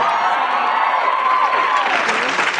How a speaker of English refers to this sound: They were forced to applaud that.